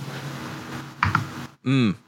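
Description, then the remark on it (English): Soft computer keyboard typing with a few crisp key clicks clustered together, then a brief loud warbling tone cuts in right at the end. “I hear those keyboard clicks.”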